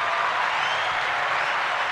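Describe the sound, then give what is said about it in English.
Steady, dense hand clapping in praise of a creative piece fills the whole two seconds, a continuous wash of many quick claps like applause, fairly loud, with no voices over it. “Yeah, I just, I can't do anything but clap it up for this because this is true creativity.”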